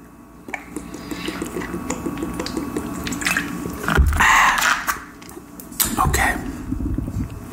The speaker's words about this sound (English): No coffee today, so, but you can hear this water trickle down my throat. So cheers.